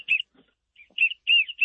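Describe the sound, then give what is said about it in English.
Wigeon ducks whistling during a duck hunt: a series of short, high, clear whistled calls in quick bursts, some with a rising-falling tone, with no talking over them. “We hear the whistling already.”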